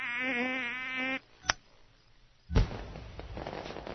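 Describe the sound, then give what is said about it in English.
A fireworks display: a buzzing whistle cuts off, a sharp pop follows, then a loud burst breaks into sustained crackling and sizzling, with no voices. “what's going on, Verrier? A fireworks display.”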